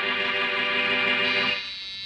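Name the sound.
doorbell ringing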